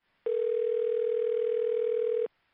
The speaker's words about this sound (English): just about that time, the phone rings.